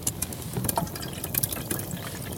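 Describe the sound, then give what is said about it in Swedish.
Boiled coffee pours from an old coffee pot in a steady, gurgling trickle, with small splashes and bright liquid clinks scattered through it. No one speaks. “En gammal kaffepanna och så ska vi ha lite kokkaffe.”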